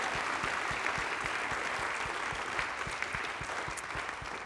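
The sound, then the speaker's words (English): An audience claps steadily to give praise to Jesus, dense rhythmic hand claps forming a continuous wash of applause with a regular beat running through it, fairly loud and sustained throughout. “Clap your hands one more time and give him some praise.”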